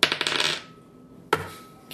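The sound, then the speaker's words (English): A six-sided die (d6) is rolled and clatters across a hard surface in a quick, bright flurry of rattling taps that fades out, then a second sharp clack follows after a short pause. No voices. “I roll another d6.”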